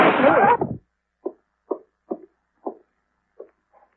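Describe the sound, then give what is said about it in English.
A loud, sharp blast of two revolver shots, one from a snub-nosed .38, fired at once, merging into a single crack that rings out briefly, followed by a series of soft, evenly spaced thuds. “He turned and they both fired together.”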